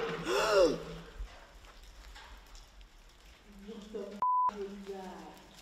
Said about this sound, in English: You gasped out loud.